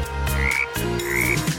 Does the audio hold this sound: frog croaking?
yes